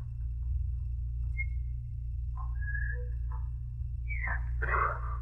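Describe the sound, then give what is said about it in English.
Someone whistles a few short, wavering notes that rise and slide, fairly faint over a steady low hum, ending in a breathier burst. “Oh, I wish I could whistle.”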